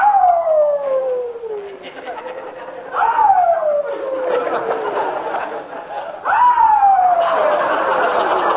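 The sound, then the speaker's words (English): A new puppy put to bed in a garage whines and howls very late at night, in three drawn-out, falling cries, one every few seconds, loud, with no one talking; from the radio show The Life of Riley. “It seems the new puppy doesn't like his bed in the garage.”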